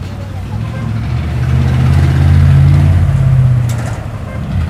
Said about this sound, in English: It's late afternoon in Mexico's Ciudad del Carmen, and rush hour's already started. Thick traffic like this is sort of a new thing here.